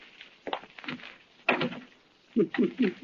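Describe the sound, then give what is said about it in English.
A door at the head of a staircase swings shut with a few sharp knocks and rattles, the loudest thump about halfway through, followed by short bursts of muffled voices. “Turn on the lights and close the door.”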